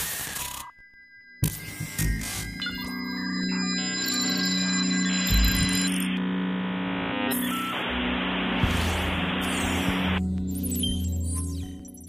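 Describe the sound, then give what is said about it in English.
An old rotary dial phone, used to call the Carlton captain, rings in a dense, sustained metallic jangle layered with buzzing hiss and tones, starting after a brief quiet moment and continuing loudly for about ten seconds. “Our old rotary dial phone.”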